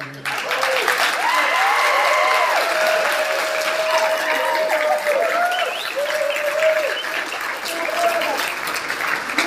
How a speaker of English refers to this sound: It's very unorthodox to clap for a hymn, but I'll take it.